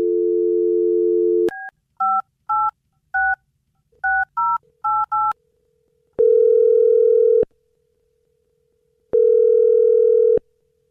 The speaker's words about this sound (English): well, I'm going to dial her in the phone number right now, okay?